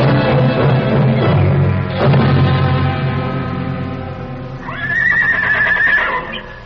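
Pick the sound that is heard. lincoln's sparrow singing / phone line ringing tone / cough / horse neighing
horse neighing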